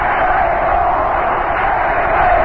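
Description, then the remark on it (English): A large crowd at a baseball game chants "let's play ball" together in a loud, steady roar of many voices that holds unbroken from start to finish, with no single voice standing out. “And the crowd is chanting, let's play ball.”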